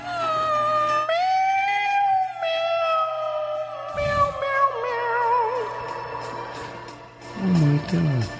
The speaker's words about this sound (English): This is the cat.